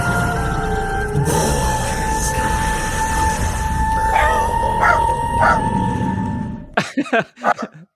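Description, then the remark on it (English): A dog barks a few times, first faint yips buried under a loud, steady rumbling noise with a droning tone, then a quick burst of clearer barks once the rumble cuts out. “That was not his voice, that dog.”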